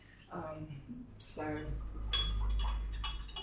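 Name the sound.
glass clinking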